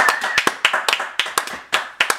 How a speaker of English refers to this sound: Thank you very much, and a round of applause from the audience.